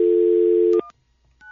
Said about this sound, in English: All right, let's dial him up.